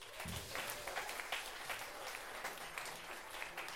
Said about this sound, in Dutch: Nog een applaus voor